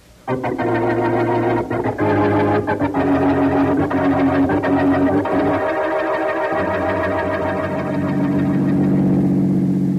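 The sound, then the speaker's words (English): A car engine runs steadily throughout as the vehicle drives along, a loud, continuous hum with slight shifts in pitch and no voices. “Don't drive so fast, Brother Harry.”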